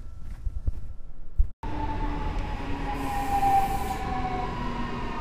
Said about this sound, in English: I thought it was my train. That's the other train. If I get on that one, I don't get there.